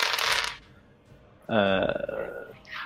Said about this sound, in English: Yeah, it's a 7. 3d6, rerolling the 2 of 3 dice.